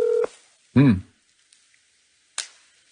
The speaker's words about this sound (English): We call? Okay, we are calling. We're calling.